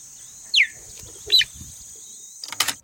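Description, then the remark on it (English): Two sharp, high-pitched, bird-like chirps from a cheetah spaced about a second apart, followed by a brief rustling burst, over a steady background hum of insects, recorded in Serengeti National Park, Tanzania. “You know they make these chirping noises, right?”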